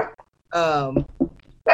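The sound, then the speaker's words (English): A dog lets out a single loud, drawn-out bark with a tonal, whiny quality after hearing knocking on a table, followed by a few short, quieter sounds. “Sorry, guys, my dog.”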